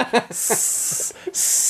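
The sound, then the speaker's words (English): Voices hiss in two long, loud bursts of broad, airy noise, briefly broken by a short pause, with some brief vocal sounds at the start. It has the sound of a crowd hissing a villain. “Yeah, hissing, there's a proud history of hissing at villains.”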